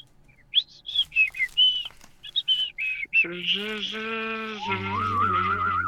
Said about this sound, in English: Man, you're a good whistler. Oh, thank you. Can you hum and whistle at the same time?